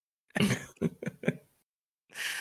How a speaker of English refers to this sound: I started laugh coughing at the mute.